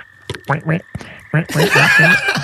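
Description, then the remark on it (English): A person imitates a pig squeal: a few short voiced grunts, then a loud, shrill, raspy squeal that strains on for about a second. “Squeal like a pig. He squeals. Let's hear it.”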